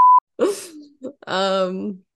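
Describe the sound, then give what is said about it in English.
A short electronic beep, then a girl's voice singing a few wavering, quavery notes that almost bleat, played briefly and fairly loudly from an app video that opened when the phone was opened. “Just some Instagram thing when I opened my phone. That's what opened up. It sounded like a sheep. It did. It was a girl singing.”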